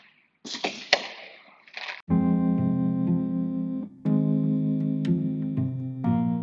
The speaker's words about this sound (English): As you guys could hear, there's fireworks.